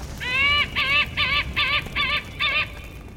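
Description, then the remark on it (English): A white-tailed hawk calls in a series of six harsh, nasal notes, evenly spaced and fairly loud, over a faint low background rumble with no talking. “Otherwise, the handsome white-tailed hawk is a shy bird of prey, staying a good distance from admiring observers.”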